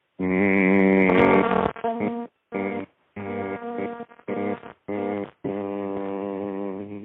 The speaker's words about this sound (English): And you don't have to do, you're not like motorboating. Your lips are closed, your tongue is in the roof of your mouth. You're just like humming, you know, like, you know, like that.